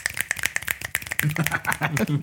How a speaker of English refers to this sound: Load up the clicking fingers.